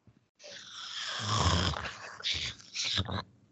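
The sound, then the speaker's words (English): A person imitates Grogu's raspy mouth breathing: a wheezy, snorting rasp lasting a few seconds, swelling and then breaking into two shorter breathy bursts. “Listen, your Grogu mouth breathing is my favorite.”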